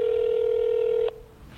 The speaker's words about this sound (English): So now we've confirmed our accident. They're transferring, well, we will be transferred to a live agent. You can hear it ringing now.